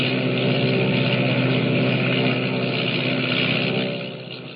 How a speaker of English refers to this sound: Motors roaring, the giant seaplane skims across the water and rises into the dark, foreboding sky,